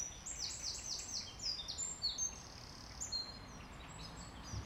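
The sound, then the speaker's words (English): Wrens singing in quick, high-pitched trills and chattering phrases, several bursts overlapping like an exchange between birds, over a steady soft background hiss. “There we go, a conversation of wrens at last.”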